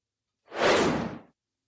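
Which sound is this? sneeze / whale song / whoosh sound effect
whoosh sound effect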